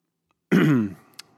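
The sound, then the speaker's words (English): A single loud throat clearing, a rough guttural burst lasting about half a second, trailing off into a faint breath and a small click, with no talking. “As I clear my throat, I want to talk, we'll get to the guests, we're going to get them.”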